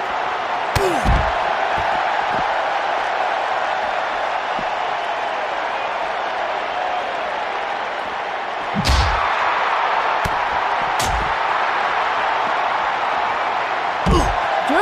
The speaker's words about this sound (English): Here's German suplex.